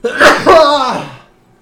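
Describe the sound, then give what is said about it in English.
A single loud sneeze with a sharp intake and forceful burst, trailing off into a brief voiced tail before silence. “Bless you.”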